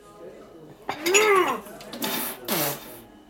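cups clinking together

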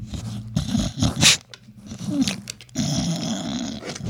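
dog growling

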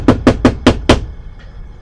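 knock on a door

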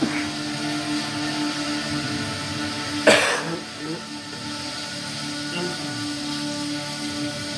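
person coughing

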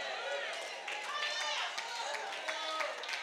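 audience clapping

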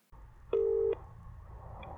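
telephone dialing tones

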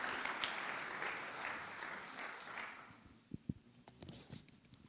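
round of applause

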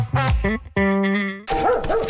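dog barking

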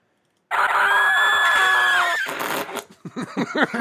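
screaming sound effect

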